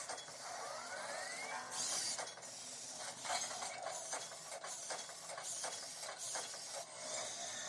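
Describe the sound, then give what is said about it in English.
Small servo motors in an Optimus Prime robot toy whir and buzz in quick bursts as it throws punches, with a short rising whine early on and a run of clicky, stuttering mechanical movements throughout. No voices. “So he's juking it out basically, like boop boop.”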